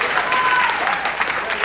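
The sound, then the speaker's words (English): An audience applauds with steady, dense clapping that holds at an even, fairly loud level throughout, while a faint voice rises briefly within the crowd noise. “You ain't clapping now, huh?”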